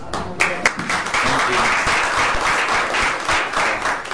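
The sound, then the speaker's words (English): An audience at the LSE Media Center applauds steadily as a speaker is welcomed, a dense wash of many hands clapping at once, loud and sustained for several seconds with no one speaking over it. “I have not earned the applause yet, and I hope I will by the end of the talk.”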